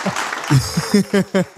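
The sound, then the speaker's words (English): A short burst of applause, a crowd clapping with some voices whooping and cheering along in quick pulses, lasting under two seconds. “So the thing that I really get excited about, in fact, I feel like you need a round of applause, is the way that you went.”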